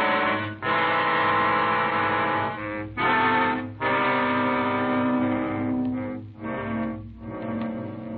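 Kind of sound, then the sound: vehicle, car driving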